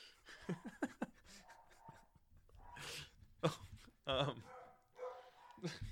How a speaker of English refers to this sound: And we're back. But it's just all live. Dogs barking. We don't really edit, so got to start and restart somehow.